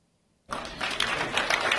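audience applauding

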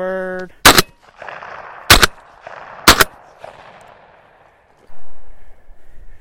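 gunshots fired

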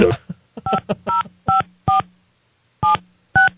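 telephone keypad dialing tones

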